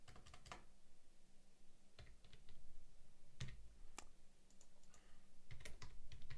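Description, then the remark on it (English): Keyboard typing, a steady run of sharp clicky keystrokes in irregular bursts and pauses, with a low background hum and no voices. “Because I can't say out loud what I'm typing in, obviously.”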